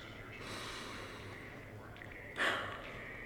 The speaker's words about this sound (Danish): Find et sted, hvor du kan sætte dig ned og lige lukke øjnene. Tag en dyb vejrtrækning.